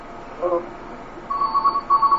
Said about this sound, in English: Yep, that phone is ringing in his house. Somebody wants me. There they are, they've gone now.